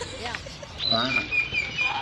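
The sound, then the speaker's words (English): Birds chirp in the background, with thin high tweets and short whistled calls repeating across the scene over a dense, noisy ambience. “I love the birds in the background.”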